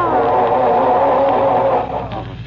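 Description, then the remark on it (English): A car engine churns and revs in a steady, rough drone, then sputters and drops in loudness near the end, as someone tries to start the car. “I'm trying to get this dad-ratted car started, if you must know.”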